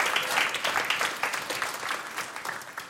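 A church audience claps steadily for a family after a Gospel reading. The applause is a dense, bright patter of many hands that holds at a fairly even level throughout and eases slightly toward the end, with no voices over it.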